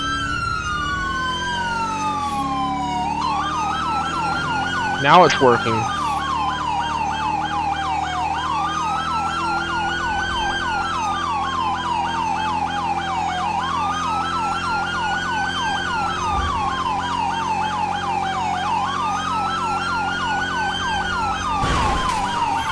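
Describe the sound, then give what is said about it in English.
A loud emergency siren wails continuously, its pitch sweeping up and down in repeating cycles, with a brief spoken phrase near the start and a couple of sharp clicks. “No sooner than I turn on my sirens.”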